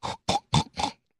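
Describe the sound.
A pig oinks and grunts four times in quick, evenly spaced bursts, close and fairly loud, with no talking around them.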